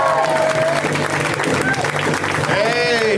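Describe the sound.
A crowd applauds steadily for about three seconds, a dense, even wash of clapping, with a few voices calling or whooping over it near the start and again at the end.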